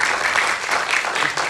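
audience applause

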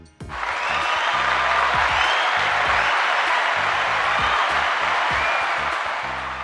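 clapping

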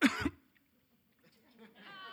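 a cough

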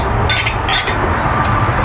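glasses clinking

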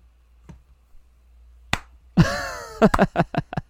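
slow clap

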